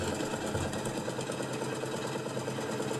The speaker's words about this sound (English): But yes, today on the podcast, we're going to have the podcast interspersed with tractor sounds. And there you've got your classic 70s there.